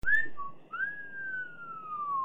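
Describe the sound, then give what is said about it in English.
An admiring wolf whistle sound effect: a short rising chirp, a brief pause, then a long rising note that slowly glides downward and trails on, clear with no voices. “That's titled Admiring Whistle.”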